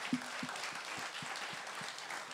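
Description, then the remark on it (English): An audience applauds North Coast raising over $27,000 for a prevention charity, many hands clapping in a dense, steady patter that holds at an even level throughout, with a few heavier claps thumping in a loose rhythm underneath. No one speaks. “So if we can give a round of applause.”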